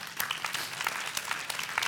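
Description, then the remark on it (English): A crowd applauds with dense, steady clapping from many hands, a brief burst of sustained applause at moderate volume, with no voices rising above it. “We can applaud that.”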